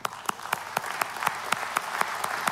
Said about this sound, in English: Psalms 47 verse 1 in the New King James Version. He says, now clap your hands, all you people. Shout to God with a voice of triumph. Clap your hands.